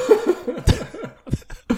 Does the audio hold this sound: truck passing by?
no